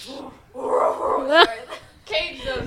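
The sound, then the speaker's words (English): Several loud dog barks and yelps come in quick irregular bursts, with a high whining yip in the middle, while a voice is faintly heard around them. “Cover the dogs. They're barking. Oh my, they're so loud.”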